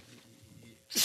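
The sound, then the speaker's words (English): After a second of near-quiet room noise, a single loud sneeze bursts out right at the end. “Bless you.”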